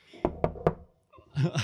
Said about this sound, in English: Oh my god, the horse knocked on the closet door.